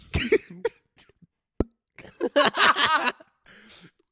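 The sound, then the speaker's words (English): A voice imitates a fart with several sputtering mouth-made raspberry bursts and a sharp pop in between, ending in a longer, buzzy, wobbling blown-lip noise. “Your fart sounds like pins.”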